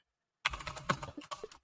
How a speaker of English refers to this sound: The aggressiveness of him typing there. He's excited to find these.